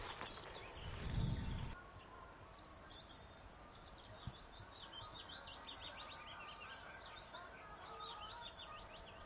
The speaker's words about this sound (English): Ah, and as I say that, there is a white throat. Just a little scratchy short call. Or is that a garden warbler? I think that's a garden warbler.